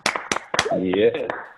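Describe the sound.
Several sharp hand claps ring out at a brisk pace as a group celebrates a man's 15 months sober, then a voice speaks while a few more scattered claps continue underneath.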